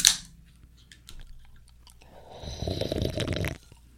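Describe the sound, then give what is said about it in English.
Someone takes a wet sip of a grapefruit-flavored drink: a few small mouth clicks, then a steady slurping draw lasting about a second before it stops. No one speaks. “All right, champion sip in 3, 2.”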